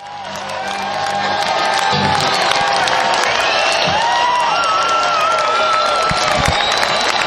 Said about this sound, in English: And as they said goodbye, here's the encore yell.